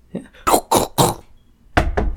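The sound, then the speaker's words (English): Three sharp, evenly spaced knocks on a hard wooden surface ring out as someone knocks on real wood, followed by a couple more quick raps a moment later. “How about one of us actually knocks on a thing in the world that exists and yeah, like so makes happens.”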